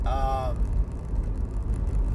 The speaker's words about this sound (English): Fuck you, dude. You faggot-ass little car.